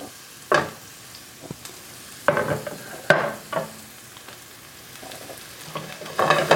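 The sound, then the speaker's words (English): A pan of garlic, ginger and scallions in sesame oil sizzles steadily while being shaken to sauté, with several bursts of louder scraping and hissing as food tosses against the metal; fairly loud, no voices. “So I'm just shaking the pan to kind of sauté it a little bit.”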